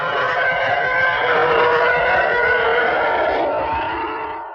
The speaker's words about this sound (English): Yeah. And this is a TIE fighter.